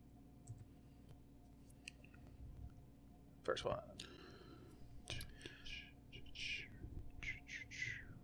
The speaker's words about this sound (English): No, I'm clicking this.